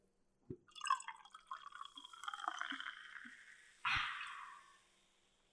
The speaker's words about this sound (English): Sorry, can we just do a little pause, a little ASMR? Sure. With the pour?